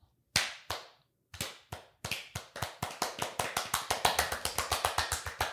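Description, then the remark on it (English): A few scattered hand claps, then a quickening run of sharp, crisp claps settling into a fast, steady rhythm of about five per second, with no voices. “Wow, you can clap faster than me.”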